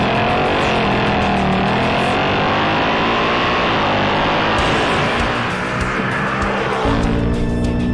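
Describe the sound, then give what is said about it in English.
A GT and a Dark Horse sports car accelerating hard side by side, neck and neck in a roll race, engines roaring loudly and continuously for several seconds, their pitch climbing and wavering, with a sudden drop in engine tone near the end, like a gear change. “Then they do a roll race. And this is hilarious. Because now, weight comes into play. And power comes into play.”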